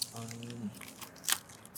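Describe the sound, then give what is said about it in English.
Crisp crunching of snack chips, a few sharp bites and chews with one loud crunch near the end, following a brief murmured voice at the start. “Oh, these taste a little different. They're really crunchy.”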